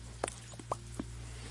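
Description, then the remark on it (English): Rain pattering outside, heard as a handful of soft, scattered taps over a steady low hum, fairly faint and irregular, with no voices. “It's raining now. Can you hear that in the microphone? The rain.”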